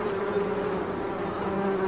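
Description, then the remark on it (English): A steady buzzing of bees drones on without pause, a continuous insect hum with a sharp tonal whine, and no voices. “I don't know how much longer I can live with seeing so many dead bees in the patch bay.”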